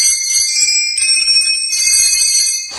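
A doorbell at Sandy's workshop at the North Pole rings loudly and continuously for nearly three seconds, a bright, shrill metallic ring that stops abruptly at the end, with no voices over it.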